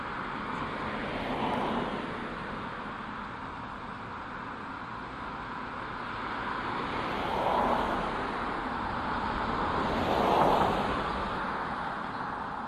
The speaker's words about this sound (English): I'm going to wait for this car to go by.